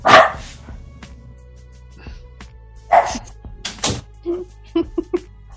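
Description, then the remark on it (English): A pet dog barks a few times, sharp, with pauses between the loud yaps and some softer thumps and clicks near the end. “Sorry, my dog.”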